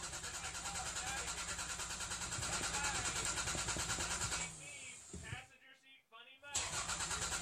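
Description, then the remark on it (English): A voice imitates a car engine cranking over and over without catching, a steady rhythmic sputter that falters and cuts out, then briefly kicks back in. “Your car won't start.”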